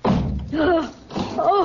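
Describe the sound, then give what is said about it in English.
A heavy door in an old house slams shut and is locked with one deep, booming thud right at the start, followed by muffled voices in two short bursts. “He's locked us in down here.”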